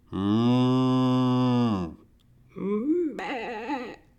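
Two loud cattle moos: a long, steady low bellow of nearly two seconds, then after a short pause a shorter call that wavers and rises in pitch.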